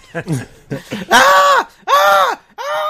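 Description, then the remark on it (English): A voice performs anguished screaming, a few short strained grunts followed by three loud, drawn-out wailing cries, forceful, with no other talk around them; a small character screaming while trying to wriggle free of a horrible thing. “Spurious is going to roll a dex saving throw at disadvantage to try and wriggle free of this horrible, horrible thing. He is screaming the entire time.”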